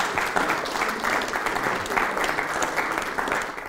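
An audience claps steadily throughout, a dense, sustained wash of applause at a fairly loud, even level with slight swells, and no voices standing out.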